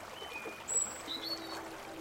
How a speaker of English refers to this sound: Near the church, the river seems quiet. Gentle, even.